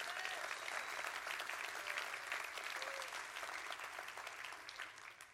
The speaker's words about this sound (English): Well, I got some of you clapping your hands. But some of you I hadn't convinced yet.